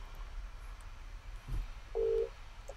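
A single short phone ringing tone as a phone call is dialed, a clear steady beep about a third of a second long, sounds once over a low background rumble with a soft thump just before it. No one speaks.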